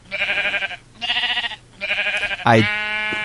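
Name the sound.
sheep bleating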